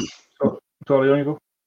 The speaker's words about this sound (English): Sorry, I was clearing my throat.